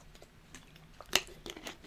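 Crinkling and crackling of a plastic Poland Springs water bottle as someone takes a little sip of water, with one sharp loud crack in the middle and a few softer crinkles around it, no voices.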